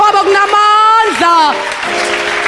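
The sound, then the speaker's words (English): A church audience claps steadily for the Lamb of God. The noisy patter runs under a loud, drawn-out voice that swoops up and down in pitch, then continues more evenly once the voice drops away. “Are you aware that whilst you are clapping, you are clapping the enemy, you are clapping disappointment, you are clapping disease, you are clapping disease, you are clapping sicknesses?”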